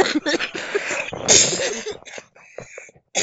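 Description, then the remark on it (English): A coughing fit: a dense run of harsh, rough coughs for about two seconds, then a few separate, weaker hacking bursts trailing off, with no one speaking. “I'm having a coughing fit at the time.”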